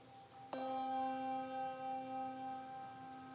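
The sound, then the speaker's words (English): A single bell is struck once in an audience's memorial for those who passed in 2023, left to ring, its clear, resonant tone sustaining and slowly fading with a gentle wavering pulse. No one speaks. “We ring a bell for those on your hearts and minds who passed in 2023.”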